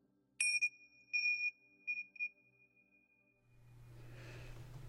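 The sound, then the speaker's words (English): A meditation bell is struck once, giving a bright, high ringing tone that pulses and shimmers as it slowly fades, then a low steady hum and soft noise take over. “And in these next few moments forward, bring your awareness and presence back to the space and place around you at the sound of the bell.”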